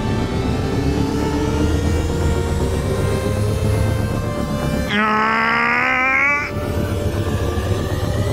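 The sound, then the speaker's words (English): A synthesized engine riser made with a riser creator plugin: a dense, roaring mechanical drone with tonal layers that slowly climb in pitch, then a bright burst of shimmering harmonics sweeps upward around the midpoint before settling back. “That's a nice engine.”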